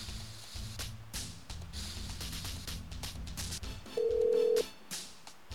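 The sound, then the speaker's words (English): A quick run of phone dialing taps, followed by one short, steady ringing tone on the line, all clear over a low background rumble. “Well, how about we get him on the phone?”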